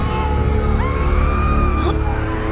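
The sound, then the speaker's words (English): Several people burning alive scream and wail in anguish together, loud and continuous, with long rising and falling cries layered over a dense crowd-like din as they writhe on the ground. “Their horrific screams sent chills down the spines of the Spartans, who watched countless people writhing on the ground.”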